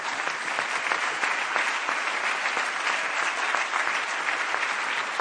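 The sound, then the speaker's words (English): Sustained applause from a large church audience, a dense steady patter of many hands clapping at an even loudness throughout, with no voices standing out. “I know you've clapped a lot. You've made him uncomfortable. Would you do it one more time?”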